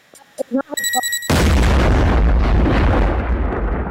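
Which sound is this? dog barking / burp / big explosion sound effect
big explosion sound effect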